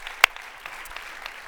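An audience applauds, a dense, steady patter of many hands clapping with one sharp, louder clap early on, then an even wash of clapping that continues without any voices.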